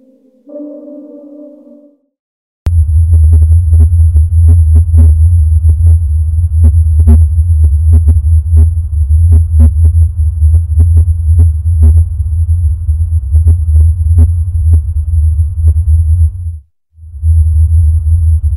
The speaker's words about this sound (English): This is a sound that some people say that they can hear, not all people. Here's a clip of the Taos hum as it has been recorded in Taos, New Mexico. And it's we'll see what you guys think.